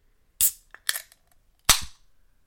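A can of Utica Club lager is cracked open: a couple of sharp metallic clicks, then a loud crack with a bright burst of fizzing hiss that quickly fades. No one speaks.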